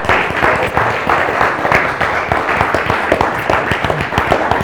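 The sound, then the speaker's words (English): A large group at an Easter Sunday church service applauding steadily, dense overlapping claps forming a continuous wash of sound that stays fairly loud and even throughout, heard from within the crowd. “Yeah, why don't we give him a bit of a clap?”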